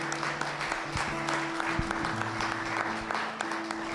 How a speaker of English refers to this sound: One more big round of applause for Jesus. Come on.